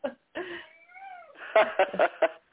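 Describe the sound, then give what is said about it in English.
A big male kitten, held in someone's arms, meows close by, first a long wavering cry, then a quick run of four short, sharp meows in a row. “And there's a big kitten here. That's who you hear with me.”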